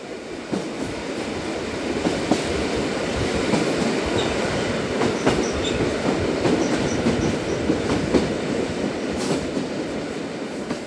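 A train rolls steadily along the rails, a continuous loud rumble with faint rhythmic clacks and occasional high squeals, with no voices.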